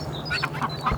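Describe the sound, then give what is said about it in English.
Small call ducks quack in quick, nasal bursts, several overlapping calls, fairly loud over a steady low hum in the background; the site keeps about eight ducks, five of them call ducks, in a small paddock. “Five of which are call ducks, little call ducks, so they're only small.”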